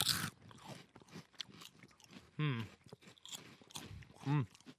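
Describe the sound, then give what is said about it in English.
Loud crunching of Bugles crispy corn snacks, a series of irregular bites and chews interleaved with people talking and brief vocal sounds. “And their crunch is amazing.”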